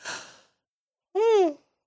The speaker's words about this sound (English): That looked like a fake yawn, but it wasn't.